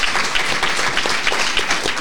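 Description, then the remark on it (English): A crowd applauds steadily, many overlapping claps blending into a dense, crackling wash of sound at an even level, with no voices standing out. “clapping for himself over on the side.”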